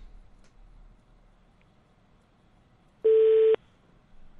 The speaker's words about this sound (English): I think he pressed one. I think that was him pressing one on the keypad.